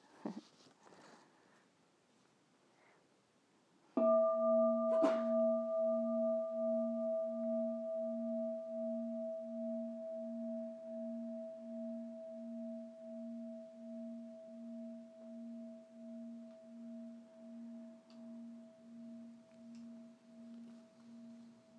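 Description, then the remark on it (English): A single meditation bell is struck and rings out with a steady low hum and bright overtones, its tone pulsing gently as it slowly fades over many seconds. “So at this point, I would like to have a bell, please.”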